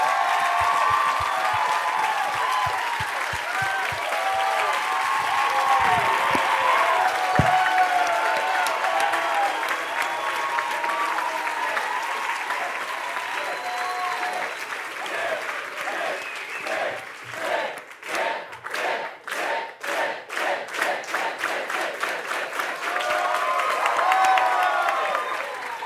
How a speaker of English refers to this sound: And I just want to give a round of applause of honor just to my wife